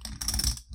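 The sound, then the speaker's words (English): Rapid clicking and clacking of poker chips being shuffled while sitting and fidgeting, a quick run of small hard taps lasting under a second with no voices. “I have these poker chips here that I shuffle throughout, like, just days of sitting here.”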